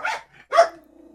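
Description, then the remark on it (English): A dog barks twice in quick succession, fairly loud, the second bark trailing into a brief low whine. No voices are heard. “Dogs have an opinion.”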